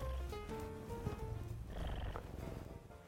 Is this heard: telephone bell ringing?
no